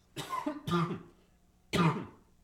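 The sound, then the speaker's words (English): Three harsh coughs: two in quick succession, then a brief pause before a final cough. No one speaks. “I didn't have a cough button right there.”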